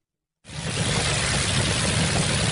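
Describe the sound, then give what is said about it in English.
The 12-cylinder piston engine of a replica of a 1924 Douglas aircraft starts abruptly after a brief silence and runs steadily, a loud, continuous rumbling drone with a dense low throb and broad roar, unbroken, no voices. “That's actually the sound of its 12-cylinder engine in operation.”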